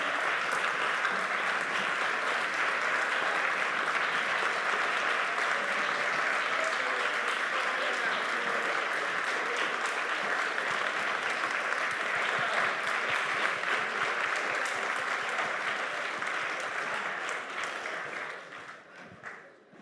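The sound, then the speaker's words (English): At the close of a debate and question-and-answer session, an audience bursts into loud, dense applause with cheering, a steady wash of many hands clapping that holds for about seventeen seconds before tapering off and fading out. “We don't know who's cheering for who, I guess.”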